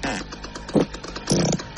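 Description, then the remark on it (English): A novelty cow fart machine lets out rough, buzzy blasts: a brief one, then a longer, louder raspy burst with a low, wobbling tone, and no one speaking. “For some reason, I have this cow fart machine here.”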